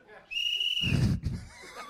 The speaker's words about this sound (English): Whistle in. Stand up so you don't blow it in everybody's ears. Don't rush to do it. Slow down.